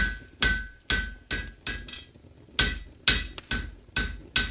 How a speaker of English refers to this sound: The song of hammer strokes sang throughout the day and into the night, and when their tune had finally ceased, the entire forge was flooded waist deep with tiny metal spheres.